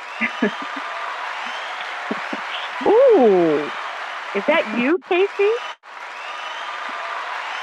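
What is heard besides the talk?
applause sound effect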